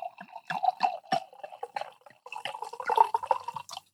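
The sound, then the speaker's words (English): White wine, In Too Deep Vino Blanco, splashes and gurgles into a glass, an uneven run of glugs and drips lasting a few seconds, with a brief pause midway before the pouring picks up again. “As in fact, let me go ahead and pour my glass. Let's see how this sounds.”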